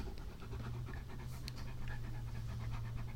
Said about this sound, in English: Really, he's right between us right now. He's very close to the microphone. Yeah, you probably hear him panting.